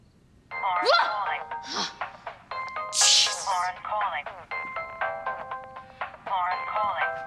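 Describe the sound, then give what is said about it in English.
A cell phone in a film scene rings with a bright, melodic electronic ringtone, called from another cell phone a few feet away, its chiming pattern repeating steadily for several seconds, with some voice-like sounds blended in. “Pulls out the cell phone and calls Emily's cell phone from the aunt's.”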